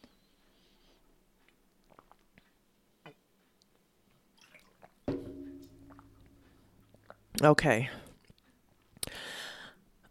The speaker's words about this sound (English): Just so you know, if you have sensitive ears, you're going to be hearing me drinking on this episode, and it's water and some blackberry mint lemonade I made. So I will be quenching my thirst if you don't like the sounds of mouth noises.